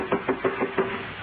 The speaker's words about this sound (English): Oh, hark. A sound upon the stairs. Footsteps. Those same plodding footsteps.